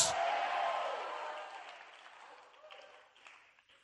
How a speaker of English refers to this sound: Will you clap your hand and shout and scream and say yes?